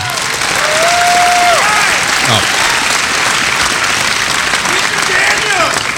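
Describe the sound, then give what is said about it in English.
Sustained applause from an audience fills the whole stretch, a dense steady patter of clapping with a few excited whoops and cheers rising above it. “Save your applause.”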